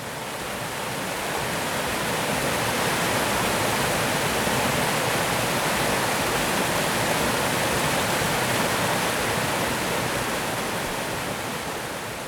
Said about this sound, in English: It was a waterfall. If you guessed a river or a stream, you were close, and they do sound a lot alike. Now that you know what it was, I'll play it for a few more seconds. You can close your eyes and imagine standing beside a waterfall as you listen.